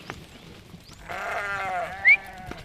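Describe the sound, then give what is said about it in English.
Ewes bleating in a muddy paddock by a creek that flows into the Cust River: one long, wavering, nasal bleat rises out of a quiet background, followed by a short high chirp and faint rustling. No one speaks. “These ewes about due for a wee shift.”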